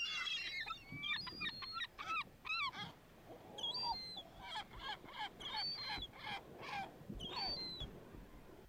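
A loud bird call used as a segue sound effect repeats over and over, a rapid series of harsh, honking squawks with brief pauses, alone with no talking.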